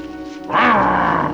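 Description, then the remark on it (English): A human voice, a smiling dullard character, makes a wolfman-like growl at the castaways: a single loud, rough, throaty snarl that bursts in after a brief low murmur and holds for under a second before easing off. “On cue, the smiling dullard steps forward and makes a very wolfman-like growl at the castaways.”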